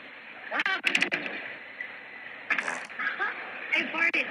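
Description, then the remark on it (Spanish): Exaggerated comedic fart noises, a woman passing gas out on a patio, enhanced for entertainment, come in several loud, sputtering bursts, each a rough, crackling blast with brief gaps between, sounding more like an overdone sound effect than a real one. “Uy, me eché un gasecito.”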